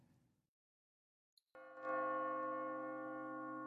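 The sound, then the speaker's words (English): After a brief quiet pause, a loud, resonant bell tone rings out and swells, its rich overtones sustaining and slowly decaying through the end without any talking; the 'Where's the Bells?' jingle played at 1 a.m. “It's 1 a.m. We got to play the Where's the Bells?”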